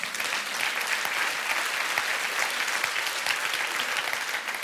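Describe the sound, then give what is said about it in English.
An audience claps steadily for several seconds, a dense, even wash of many hands with no pauses and no voices standing out. “Yeah, they deserve a clap.”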